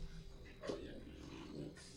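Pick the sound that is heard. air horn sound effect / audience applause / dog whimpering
dog whimpering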